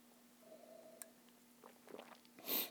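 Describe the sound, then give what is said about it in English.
A quiet sip of a cloudy session beer with a creamy foam head: a few soft wet mouth clicks, then a short airy slurp at the end, with no one talking. “Smelling and sipping at the same time enhances the beer experience.”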